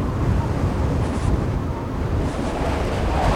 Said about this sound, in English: Lowering the cargo ramp, Kai, Aiden, Somas, and Teresa disembark the Logan Star and are immediately greeted with a blast of icy cold wind that could knock over a smaller person easily.